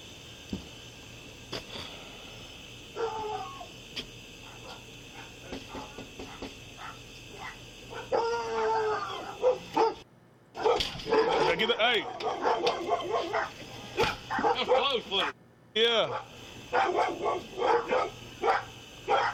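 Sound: dogs barking and howling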